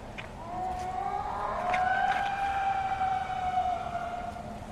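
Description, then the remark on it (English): A long, eerie Bigfoot howl performed by a person: one wavering wail that rises, holds a steady mid pitch for several seconds, then slowly sinks, loud over a constant rumbling background hiss. “That was a Bigfoot howl.”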